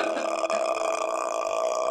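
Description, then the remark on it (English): A voice imitates the creepy, croaking rattle of the ghost from the horror film The Grudge: a steady, throaty, guttural rasp sustained for about two seconds with a buzzing, tonal quality and no words. “I hate it. That noise makes me want to die.”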